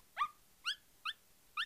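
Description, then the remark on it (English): An older, small, shaggy black terrier named Shadow whimpers in four short, high-pitched whines, spaced about half a second apart, clear with no one talking. “he absolutely dotes on his dog, an older, small, shaggy black terrier named Shadow.”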